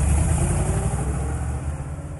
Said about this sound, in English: Well, we need some sound there. I may go away and make a recording of a car that's about like that car that I see on the screen doing those things, backing up and driving off.